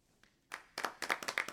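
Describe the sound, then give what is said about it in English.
A short burst of applause starts after a quiet moment, with scattered hand claps building quickly into a dense, lively patter from a small group. “No. Don't applaud that.”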